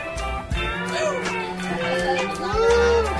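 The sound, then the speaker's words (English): A crowd of many people, asked to mutter angrily and loudly, mutters and grumbles at once, a dense, steady, fairly loud murmur with no clear words, swelling slightly toward the end. “Hey, would everyone just mutter angrily really loudly right now?”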